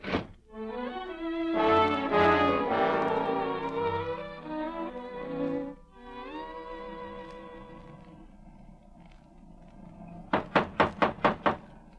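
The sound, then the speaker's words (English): After a stretch of orchestral music fades, five sharp, evenly spaced knocks rap loudly on the front door of a house in quick succession. “Saskia ever answered the door inside of 10 minutes, I think I'd drop dead.”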